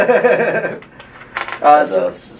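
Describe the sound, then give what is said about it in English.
A glass Coke bottle being pried open: a burst of metallic clinking and scraping against the cap, a pause, then a sharp pop and a brief fizzy hiss. “I'm gonna borrow that real quick, and speaking of Express Deli, that's where I got this delicious glass bottle of Coke. But I never ever remember to bring my own bottle openers.”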